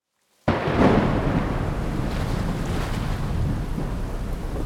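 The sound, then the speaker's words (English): A sudden roar of storm noise bursts in after a brief silence: heavy wind, crashing water and rumbling low-end turbulence around a sailing boat in a major world sailing race in 2007, at night, heading into a massive storm in the English Channel with force 9 gusting 10 winds; loud and continuous with no voices. “It's in the middle of the night and the boat is headed straight into a massive storm.”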